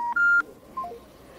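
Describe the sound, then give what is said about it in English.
A few short electronic keypad tones from a mobile phone as a phone number is dialed: a brief beep, a longer held one, then a softer third, each clear with no talking. “So we're going to try another number here.”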